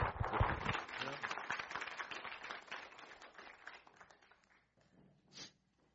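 A crowd applauds in a dense, steady patter of many hands that gradually thins and fades over about five seconds, ending with a few scattered claps.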